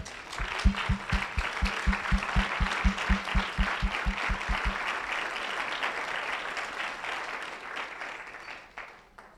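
An audience claps loudly and steadily for God during a sermon, with rhythmic low thumping beats underneath for the first half, then the applause carries on alone and tapers off at the end.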